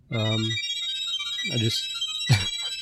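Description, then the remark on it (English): A phone ringtone plays Chrono Trigger video game music in chiptune style: a few short bursts of bright electronic notes over a steady high-pitched hum, clear, with no talking. “Sorry, I just feel my like phone I enjoy chrono triggering here.”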